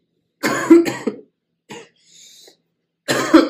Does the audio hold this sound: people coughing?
yes